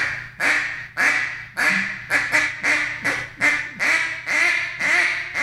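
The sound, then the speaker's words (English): A duck call blows a steady series of about eleven separate, loud, nasal single quacks, evenly spaced, with no talking. “I've killed a lot of ducks with a quack, just a quack, just single quack, and a lot of people don't even use that anymore.”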